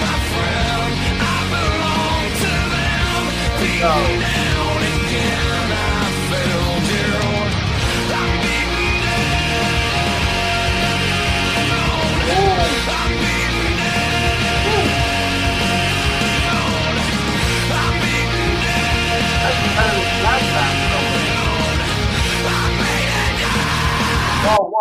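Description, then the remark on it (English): A rock song plays loud and dense for the whole stretch, a singer screaming hoarsely over thick distorted guitars and pounding drums, with no pause or break. “See, he's screaming so loud and so primally, you gotta pay attention, you gotta listen.”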